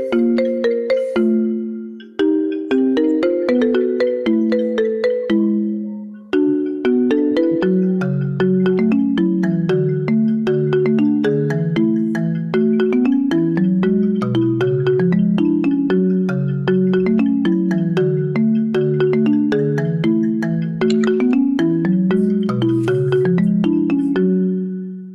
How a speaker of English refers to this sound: I actually have this what Tick Tones different popular or trending or whatever songs and turn them into iPhone ringtone.